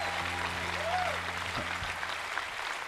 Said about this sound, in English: You're clapping.